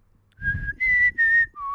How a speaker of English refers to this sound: I can whistle, and I do practice that one in the car.